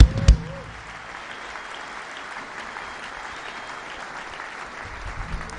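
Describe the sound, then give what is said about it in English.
An audience claps their hands for the Lord in a steady, dense wash of applause that holds at an even level for several seconds, after a brief louder burst at the very start. “Clap your hands for the Lord once again.”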